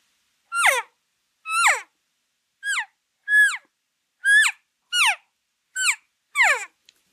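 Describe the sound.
Eight high-pitched elk calf calls, each a short mewing squeal that slides downward, repeated at a steady rhythm with brief silences between them and no talking.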